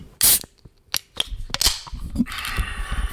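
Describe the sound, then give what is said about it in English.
A hard seltzer can cracks open with a loud, sharp pop, followed by a few small metallic clicks and then a steady, soft fizzing hiss as the carbonation escapes. “Everybody be quiet. I'm going to do an ASMR.”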